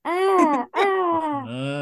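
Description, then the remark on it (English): A voice imitates a pterodactyl call: two loud, strained, harmonic screeches with a brief break between them, the second trailing into a lower rasping groan. “and he's like, "How does a pterodactyl sound?"”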